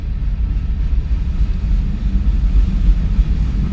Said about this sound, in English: To be frank, I'm not wearing a mask, but I'm in the car. The window's cracked. Nobody anywhere near me.